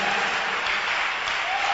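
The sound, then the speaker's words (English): An audience at a church service claps for Jesus in a dense, steady wash of applause, loud and continuous for the whole stretch with no voices standing out. “Clap again for Jesus.”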